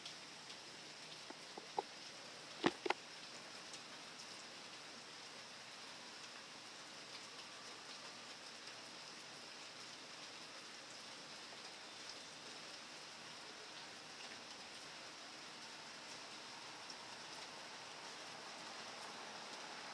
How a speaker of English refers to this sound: Well, the rain keeps falling. So let's just listen to it for a while.